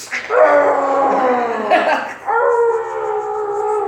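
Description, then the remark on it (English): A fat dog howls and whines over its empty food bowl in long, wavering cries, one drawn-out howl sliding down in pitch and then breaking into a second sustained moan, loud and alone. “You should see that fat dog losing his fucking mind. That there wasn't any more food in the bowl.”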